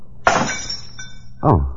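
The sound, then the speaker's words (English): A glass of water knocked out of someone's hand smashes with a sharp, bright crash and a scatter of tinkling shards, followed by a second lower clatter of pieces hitting the floor. “I must have knocked the glass out of your hand.”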